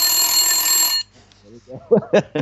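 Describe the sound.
An egg timer rings loudly with a rapid metallic bell clatter for about a second, then cuts off abruptly; after a short pause someone starts talking.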